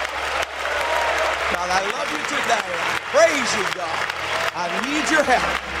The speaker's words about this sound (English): Put your Bibles down, clap your hands together, shout, God bless the word.